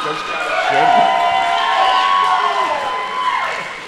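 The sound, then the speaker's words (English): A crowd cheers and applauds loudly and steadily for about four seconds, with many voices shouting and whooping over a wash of clapping. “And so, then I wrote, pause for applause in the document.”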